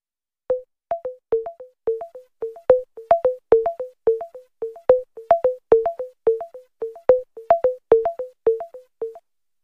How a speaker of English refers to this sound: Now, before those tones started, I did feel a gentle vibration on the blind shell. And those tones tell you that the AI is currently working.